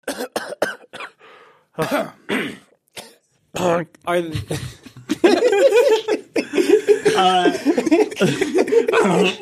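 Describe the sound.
A person vocally imitates a goose coughing with a string of short, sharp honking coughs, followed by laughter and overlapping voices as people crack up.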